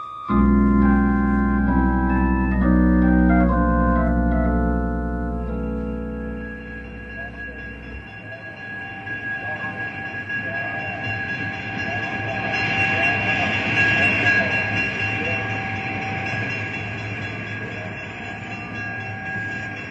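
A train pulls into a station, opening with loud, deep droning tones that step in pitch, then settling into steady hissing, rattling noise with a thin high squeal as it slows.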